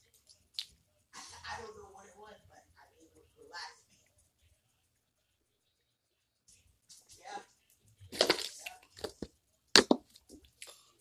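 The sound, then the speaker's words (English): Someone drinks water: a run of wet sips and swallows, a quiet pause, then a louder cluster of gulps, lip smacks and a sharp clack near the end. “But I gotta say, take some water real quick.”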